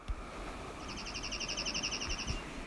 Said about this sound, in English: This final clip was a Dark-Eyed Junco.